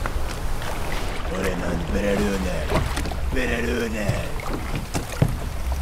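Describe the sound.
A boat being rowed on a river as the current grows stronger and the water rises: steady rushing noise with a few sharp splashes, while a voice strains and groans over the din.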